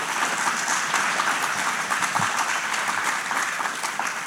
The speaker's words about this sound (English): So yes, applaud again.